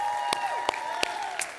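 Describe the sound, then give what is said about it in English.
An audience at a packed church service applauds for Jesus, with a few sharp, evenly spaced claps standing out over a steady wash of crowd noise and a sustained musical tone. “Let's give it up for Jesus one more time.”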